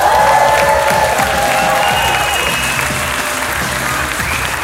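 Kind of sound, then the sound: crowd, audience applause and cheering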